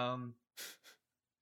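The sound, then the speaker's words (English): A person yawns: a short voiced groan that trails off, then two breathy exhales of air, with no words spoken. “So I was just yawning because I'm so bored of talking about Tanner Roark.”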